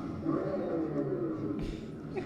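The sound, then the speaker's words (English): An electric car's external speaker, mounted underneath the car, plays a synthetic engine sound, a steady, loud, deep growling roar with layered low tones, briefly swelling into a harsher burst near the end. “You hear an electric car with a speaker underneath, and you go, wow.”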